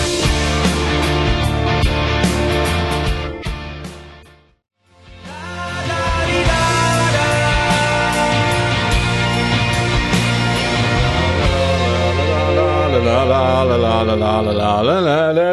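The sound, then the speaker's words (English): Horse sounds, sped up until they blend into a dense, musical wash of layered tones with wavering pitches, loud and continuous except for a brief drop-out near the start, with no voices. “The sound of an actual band of horses there.”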